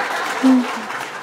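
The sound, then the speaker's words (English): A steady wash of audience applause fills the whole moment, with a brief low vocal sound rising over it partway through. “She always thinks the applause is for her.”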